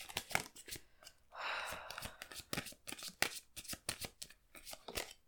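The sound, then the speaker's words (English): Crisp shuffling of a deck of cards during a card reading: rapid flicking clicks throughout, broken by a longer whirring riffle near the start, then more quick, uneven snaps and taps. “Okay, I'm just gonna finish shuffling this before I tell you.”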